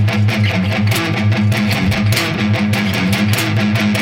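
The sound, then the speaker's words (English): A chugging electric guitar riff with light distortion, palm-muted low notes pulsing in a steady rhythm with sharp accented hits, played loud with no voices. “That's another great riff that used to start off with not quite so much distortion, lots of muting.”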